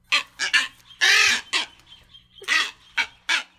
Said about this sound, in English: Boobies are a group of goose-sized tropical seabirds with long pointed bills, wings, and tails. There are three species of boobies that live in Hawaii: the red-footed, the brown, and the masked